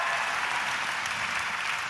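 A crowd applauds steadily, a dense wash of clapping hands that stays loud and even from start to finish with no voices over it.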